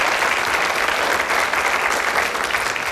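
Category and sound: crowd, audience applauding in praise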